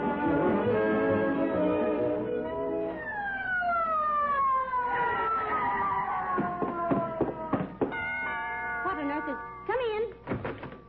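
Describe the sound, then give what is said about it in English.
A loud ambulance siren wails, its pitch gliding down in long sweeps after a steady tonal opening, with sharp clattering knocks breaking in toward the end. “Call for an ambulance?”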